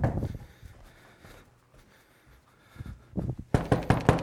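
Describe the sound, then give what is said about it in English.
A quick run of knocks on a door, a few softer raps followed by a louder, faster burst of sharp knocking, with a quiet stretch before it. “Like the more doors you knock on.”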